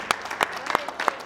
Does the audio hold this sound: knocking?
no